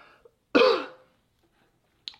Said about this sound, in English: Got some weird cough.